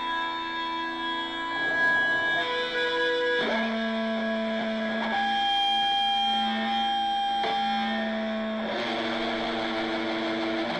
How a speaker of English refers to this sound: This is the whole song. It's just like one note being held.